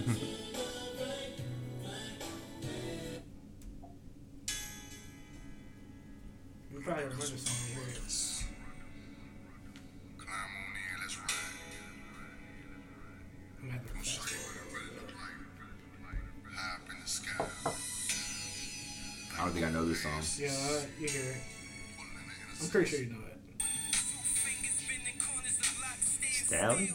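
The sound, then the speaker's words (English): A song plays through a small phone speaker, running continuously for the whole stretch at a steady, moderate volume with a busy mix of instruments and no talking over it. “I might have to play it through my phone.”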